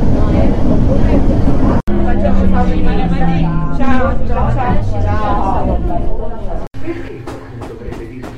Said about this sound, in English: On the train to Sorrento for a day in Capri.